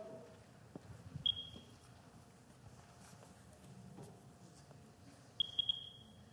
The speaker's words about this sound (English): You hear the beeps? That's signaling that it's picking up some of this decay in the rock. And this is a rock that's 80 million to 200 million years old.